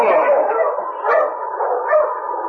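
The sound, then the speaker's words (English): A pack of sled dogs at a camp in the snow barks and yips together in a loud, dense, overlapping chorus that keeps going without pause, a few sharper yelps rising above the din. “The crook's dogs began to bark”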